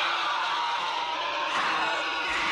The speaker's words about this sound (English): And then, of course, as we've talked about throughout Invasion of the Body Snatchers, there's not only music, but then there's the sounds that come out of the pod people, which is like a kind of a screech.